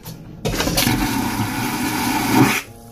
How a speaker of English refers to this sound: These are things you should know before going on a cruise. Men, if you're packing, especially you black men, do not flush the toilet while you're on it.